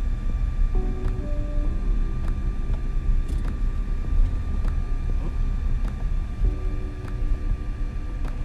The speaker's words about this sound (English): when you're following behind vehicles and you're driving and you're also trying to do a podcast at the same time